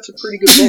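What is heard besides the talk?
sneeze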